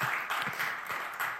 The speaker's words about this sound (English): Can you say amen tonight? Yeah, come on, you can give Jesus a round of applause tonight.